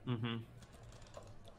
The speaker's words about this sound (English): Stop typing and tell us plan.